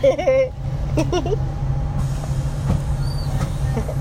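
A large bus engine rumbles low and steady as the bus, with a heavy load in the back, backs up, with a couple of brief, muffled voices near the start and faint clanks in the background.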